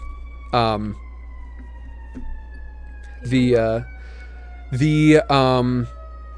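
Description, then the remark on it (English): An emergency siren outside holds a steady, drawn-out wail through the whole stretch, while short bursts of a person's voice pop in over it now and then. “We got sirens, we got all sorts of stuff going on.”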